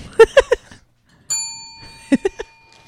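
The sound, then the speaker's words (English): A single bright bell ding rings out clearly and sustains with a long, slow fade, set between short bursts of voices before and after. “Where's the bell?”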